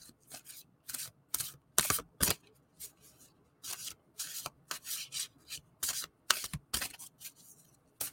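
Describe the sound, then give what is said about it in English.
An oracle card deck being shuffled: a run of quick papery riffles and rubbing swishes in uneven bursts, with brief pauses between, and no talking. “And we will just take a second to shuffle.”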